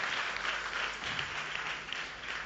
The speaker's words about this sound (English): We can do better with the applause, please.